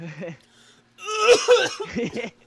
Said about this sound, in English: he's over there dying from coughing. I'm over sneezing.